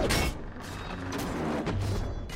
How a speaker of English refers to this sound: Now listen to the ladders as the ladders start coming up the wall here. That wonderful creaking as they're trying to shoot all the orcs down off the ladders.